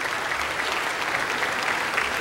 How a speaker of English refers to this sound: All right, we only have four perfect children remaining standing, so let's give them a hand, a round of applause right now.